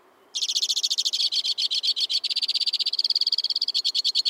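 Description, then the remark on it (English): A white-winged crossbill, perched at the tip-top of a black spruce in winter, sings a rapid, high-pitched trill: fast repeated notes run together for about four seconds, shifting slightly in tone partway through, loud and with no other sounds. “From the tip-top of a black spruce, a white-winged crossbill sings a rapid-fire tribute to winter.”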